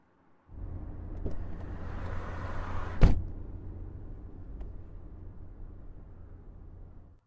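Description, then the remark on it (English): A car engine rumbles low and steady as the vehicle pulls away and drives toward a base, with one sharp thump like a door shutting partway through, then the motor carries on before cutting off. No voices. “You have successfully stolen someone's car and you drive towards the base.”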